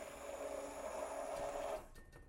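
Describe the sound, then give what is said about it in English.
An immersion blender whirs steadily with a constant motor whine as it blends food until it looks like soup, then cuts off abruptly near the end, leaving quiet. “How do you clean an immersion thing? You pop the end off and you stick it in the dishwasher.”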